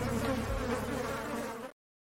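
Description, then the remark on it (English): A steady buzzing bee sound effect drones continuously for under two seconds, loud and sustained with a slight wavering pitch, then cuts off abruptly into silence. “It's now time for the things that sting”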